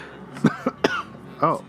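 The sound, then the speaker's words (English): A few short, sharp coughs in quick succession, fairly loud, followed by a brief voiced throat sound. “had a little cough there.”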